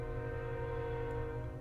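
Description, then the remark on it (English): A train rumbles steadily in the background, a low, continuous drone with a faint tonal hum, holding at an even, moderate level throughout with no voices. “Uh-oh, I hope they can't hear the train.”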